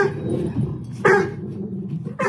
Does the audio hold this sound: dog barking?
yes